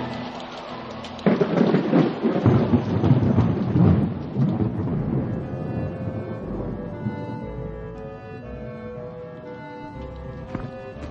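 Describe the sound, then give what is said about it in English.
A heavy thunderstorm: a loud rumbling thunderclap breaks over steady pouring rain, then fades into a long, lower roll while the rain keeps falling. No voices. “I'd rather take my chances there than out in this fabricated storm. We could get electrocuted or catch pneumonia or something.”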